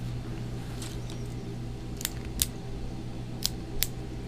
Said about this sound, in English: I got the pen. Okay. I clicked it right next to the microphone. I could tell. I could hear it.